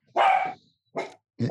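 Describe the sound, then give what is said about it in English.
A dog barks loudly: one long, drawn-out bark followed by two shorter ones after brief pauses, with no voices. “And your dog agrees. Your dog is just right on the tragedy part of it.”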